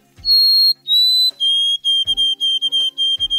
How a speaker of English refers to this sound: Now, listen to a fully developed white-throated sparrow that has perfected or crystallized its song. Notice the confident, precise notes.